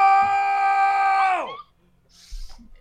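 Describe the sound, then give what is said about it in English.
A person lets out a loud, sustained scream to scare a livestream audience, not yelling directly into the mic, at a steady high pitch for about a second and a half; it then drops sharply away into near silence, followed by a soft rustle and thump. “Also, please scare the shit out of the stream by screaming, let's go.”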